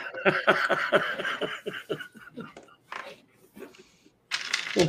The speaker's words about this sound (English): I'm not doing the counting. I'm just doing the dice rolling.